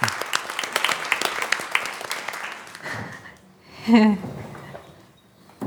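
A church audience at Courtright applauds warmly to welcome a guest preacher, a dense patter of many hands that thins out after a few seconds, followed by a brief spoken voice as the clapping dies away.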